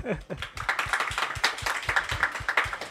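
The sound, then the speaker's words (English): A round of applause from a small group, steady dense clapping that carries on throughout at a moderate level, with a brief voice-like murmur at the very start. “I'm going to get a round of applause already.”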